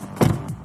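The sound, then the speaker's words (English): A car door unlocks remotely with one brief mechanical clunk, followed by a faint low whir that quickly fades. No one speaks. “I can open his car.”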